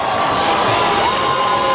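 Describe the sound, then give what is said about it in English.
A crowd of students, Wayne Generals fans swarming a basketball court after a buzzer-beater sectional championship win, cheers and shouts in a steady, loud roar, with a high whistle-like tone sliding through the din and occasional whoops rising above the noise. “The students come alive with cheers of jubilation.”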